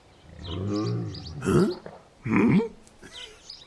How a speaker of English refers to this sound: you hear in the background atop this tower a roaring sound.